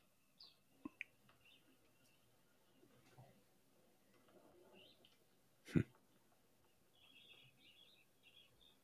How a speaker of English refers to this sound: So it's a mix of mostly Western sandpipers there.